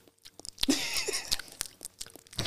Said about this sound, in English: you're biting like slow-mo. Yeah, because you say my chewing's loud, so I was trying to be quiet.